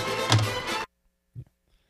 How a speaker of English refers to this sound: Now, what I did there at the end, you could hear, I spiked the headphones. It's a spike. I don't have a football. I have a microphone. I spike and a headphones. I spiked the headphones. It's my touchdown celebration. That's how I did it.